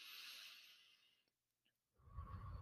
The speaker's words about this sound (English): When you're sitting there meditating and you're thinking with your eyes closed, for the people that's watching me on YouTube, you're sitting there with the eye with your eyes closed like this, right? And you're taking deep breaths.